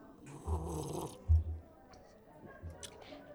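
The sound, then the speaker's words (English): A few wet slurping sips of a berry beer being tasted, with soft swallowing noises in between, breathy and uneven, with no talking. “One more sip here.”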